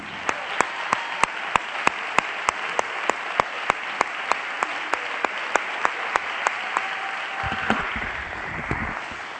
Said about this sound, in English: You ought to clap your hands one more time.